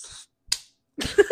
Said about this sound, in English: probably sounded so gross. And I slapped it onto my arm and I gooped it everywhere.